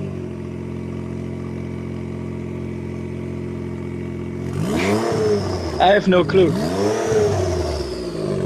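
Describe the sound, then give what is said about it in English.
A Honda Ridgeline pickup truck engine idles with a steady low hum, then revs up sharply and drops back, twice in quick succession, fairly loud, with a brief spoken remark over it. “But I mean, it's sort of somewhere between a car and a truck. It's a Ridgeline truck.”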